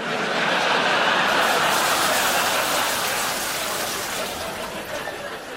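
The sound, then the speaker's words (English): A flushing egg cup flushes like a toilet with a loud, steady rush of water that swells quickly and then slowly tapers off over a few seconds, with no voices. “A flushing egg cup?”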